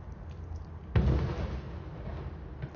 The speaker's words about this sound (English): Wow, that is one big firework. Firework. Is that how you say it? For one firework? That's one big firework.